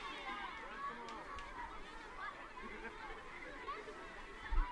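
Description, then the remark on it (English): Steady crowd chatter, including many kids, fills a stadium at a BYU versus San Francisco soccer match at night, a dense babble of many overlapping voices with occasional brighter shouts, holding at an even, moderate level throughout with no single voice standing out. “As we mentioned, a really nice crowd here tonight.”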